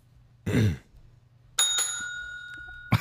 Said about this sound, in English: I think you used the bell in vain. He did use the bell in vain.